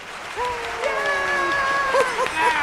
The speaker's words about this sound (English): Well, thanks for the applause, everybody. Thank you for joining us.